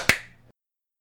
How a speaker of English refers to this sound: All right, let's clap. Yeah, all right. 1, 2, 3.